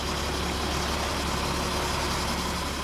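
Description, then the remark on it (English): A moving truck's engine idles steadily outside a townhouse in Rockland on the morning of a scheduled eviction, a constant low rumble with a broad mechanical hiss and no change in pace or loudness. No one speaks. “A moving truck idles outside Peter Avitabile's townhouse in Rockland the morning of the third scheduled eviction.”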